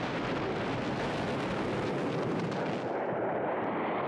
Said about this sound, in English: But enough time for them to run out of the way before this fire bomb explodes and consumes the fire in a really cool sound effect.